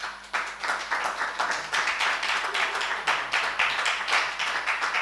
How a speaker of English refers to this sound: Oh, you can clap for her.